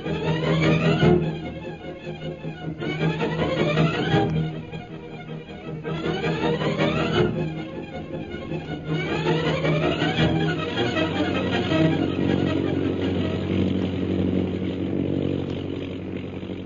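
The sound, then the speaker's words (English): Jungle Jim's propeller airplane, flying toward Mandalay over mountainous jungle country after refueling in Hong Kong, drones steadily in flight, loud and buzzing, with its pitch repeatedly swelling upward in waves every second or two. No voices are heard. “After landing at Hong Kong to refuel, Jungle Jim's plane continues on its journey toward Mandalay.”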